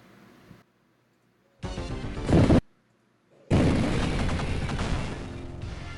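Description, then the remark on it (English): Explosion sound effects from the X-Men arcade game: a short, loud crunchy blast followed after a brief gap by a longer, roaring burst of noisy rumble that sustains to the end, with no talking. “I'm sure many times I heard this while sitting in that arcade.”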